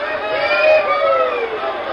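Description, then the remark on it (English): A large rodeo crowd murmurs and chatters all at once, many overlapping voices blending into a steady, fairly loud hubbub with no single speaker standing out. “Let's head to the cafe ahead of the crowd.”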